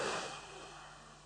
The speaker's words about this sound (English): You breathe like this. Watch. You breathe in through your nose as deep as you possibly can. Get the air way down in your through your diaphragm. So you now you're breathing out like this.